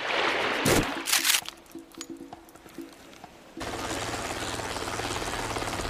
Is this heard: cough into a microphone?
no